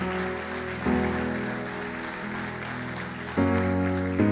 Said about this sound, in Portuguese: Vamos aplaudir ao Senhor porque Ele é um Deus de milagres.